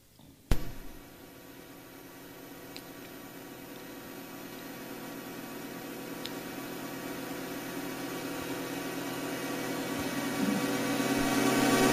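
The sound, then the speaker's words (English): A continuous, layered humming drone with hissy noise, slowly swelling louder over twelve seconds after a sharp click at the start; no voices, just the steady eerie hum of a NASA recording of sound in space. “And this is the real actual sound that you're hearing that is in space, thanks to our tax dollars that we're paying for and NASA.”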